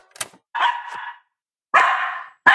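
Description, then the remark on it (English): A dog, terrified of its owner wearing an LED face mask, barks loudly: two sustained, harsh barks separated by a pause, with a third starting at the end and a sharp click before the first. “My dog is terrified of me. Got the mask on.”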